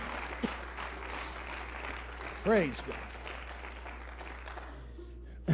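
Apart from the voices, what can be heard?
audience hand clapping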